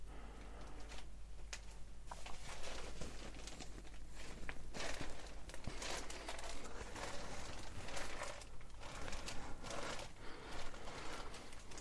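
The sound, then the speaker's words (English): Paper crinkles and crackles under a steady series of footsteps, a soft, continuous rustling with no voices, each step adding a brief crunch. “walking on paper.”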